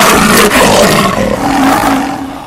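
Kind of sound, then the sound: animal, lion roar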